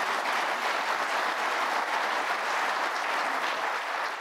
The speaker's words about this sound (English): If you agree with me, please offer them a round of applause.